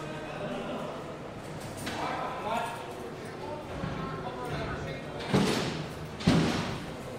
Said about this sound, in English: A long corridor, a highly polished floor, yellow light, the smell of disinfectant, cells to left and right, steel cell doors, and everywhere the wing hubbub.